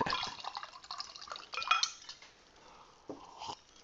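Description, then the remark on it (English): Wine, an Illuminati Reposado, glugs and splashes into a glass, with a bright clink of glass and trickling liquid, then a few fainter drips and taps as the pour trails off. “So let's pour some wine and talk about some of the differences of Europe.”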